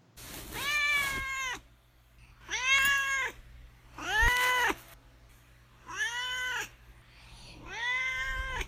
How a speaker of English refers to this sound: All right, let's see what my cat Dorje has to say about this.